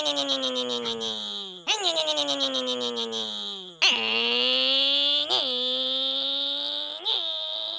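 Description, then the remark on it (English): A voice imitates a racing car engine, loud sustained buzzing tones that rev up and drop in pitch several times like gear shifts, with no other talk. “That's what I sound like when I drive my car, I'm pretend I'm racing on the highway.”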